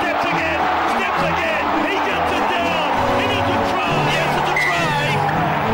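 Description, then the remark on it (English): A large crowd roars and cheers wildly at a sports match, a dense, loud wall of voices that swells continuously with shouts rising above the din. “And the crowd starting to go wild.”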